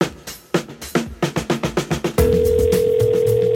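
A rapid, evenly spaced run of about ten telephone dialing pulses as a number from the phone book is dialed, then a steady, continuous dial tone that holds loud until the end. No one speaks.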